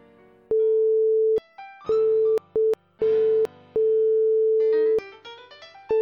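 A string of five loud censor bleeps, steady mid-pitched tones of uneven length, one very short, cutting in and out with faint musical sounds in the gaps and at the end.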